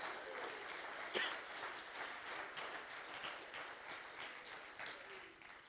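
A church audience claps their hands unto the Lord steadily for several seconds, a dense, continuous wash of many hands with one sharper clap standing out near the start, fairly quiet.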